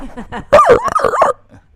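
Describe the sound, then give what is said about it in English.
A voice imitates a DJ record scratch: a few soft, quick bursts, then a loud run of about five choppy vocal strokes whose pitch swoops up and down, ending abruptly with a faint trailing sound. “It was supposed to be a scratch. That was awful.”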